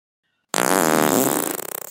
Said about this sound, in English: Went the little devil's bottom, and a burst of pretty pink but putridly sulphurous gas engulfed Alexander's face.